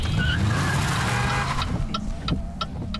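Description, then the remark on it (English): A car brakes hard with a drawn-out tire squeal over a low engine rumble, followed by a few quick, sharp clicks as the vehicle comes to a stop. No one speaks. “Now, wings at 10 and 2, Talon on the brake.”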